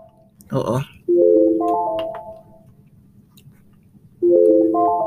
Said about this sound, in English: Sorry about that. I got an alarm going off.